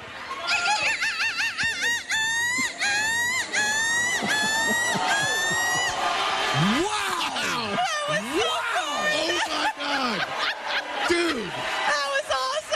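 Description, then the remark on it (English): A woman imitates a seagull in a crowd contest with a run of shrill, wavering screeches, loud, in rapid repeated bursts, while laughter and lively crowd noise build around the calls. “Give us your best seagull screech.”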